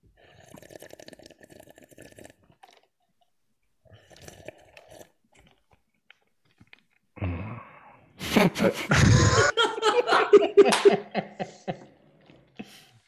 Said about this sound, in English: I'm drinking an iced latte. ASMR stuff. There's so much ice in this iced latte. It's so cold and wet.